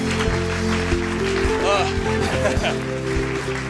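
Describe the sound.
An audience applauds in a dense, steady wash of clapping that lasts the whole stretch, with murmuring voices and a low, droning musical tone running underneath.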